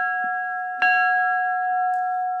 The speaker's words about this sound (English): They have to voluntarily get up in front of everybody, go to that bell, and ring it three times to be done, to quit, to say, I am out of here.